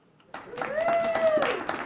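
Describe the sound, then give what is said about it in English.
A small crowd of federal bureaucrats and representatives of Southeast Alaska organizations claps steadily for a couple of seconds, celebrating the signing of an agreement in Juneau, a dense patter of hands that starts abruptly, with a brief voiced cheer or exclamation rising over the applause. “A small crowd of federal bureaucrats and representatives of Southeast Alaska organizations celebrates the signing of an agreement in Juneau.”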